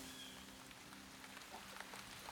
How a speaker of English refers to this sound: But then it rained. It was a flood.